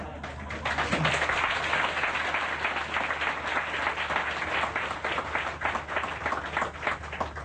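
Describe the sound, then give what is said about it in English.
Loud, sustained applause from an audience responding to the speaker talking about money, a dense wash of many hands clapping at once that swells quickly and holds steady for several seconds with no talking over it. “When I talk about money, your eyes lit up and you clap so loud.”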